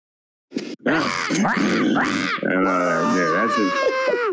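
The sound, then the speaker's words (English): A person imitates a bird with harsh, strained squawks and grunting calls, loud and continuous for about four seconds, the pitch wavering and sliding in rough bursts. “I'm glad to know that I've got like a couple hundred listeners who have to listen to me making awful squawking noises right now.”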